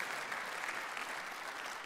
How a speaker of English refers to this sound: And you can clap for Jesus. That's good. That's our Messiah. That's good.